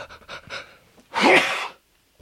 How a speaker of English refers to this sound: I'm going to sneeze.